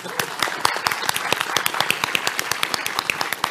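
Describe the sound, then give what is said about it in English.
A round of audience applause, with many quick, sharp claps overlapping into a steady, lively patter that holds at an even level throughout. “Round of applause.”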